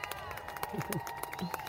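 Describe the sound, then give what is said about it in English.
A short burst of audience applause, many hands clapping in a dense, uneven patter with some crowd voices and cheering mixed in, moderately loud. “That sounds just like the applause from the beginning of the show.”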